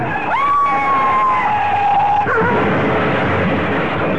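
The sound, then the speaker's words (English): A car crash with police sirens: a loud, sustained high wail holds for about two seconds, then breaks off abruptly into a dense, noisy roar that carries on to the end, with no voices. “Ed Javison died in that crash, so mutilated that his body could not be identified.”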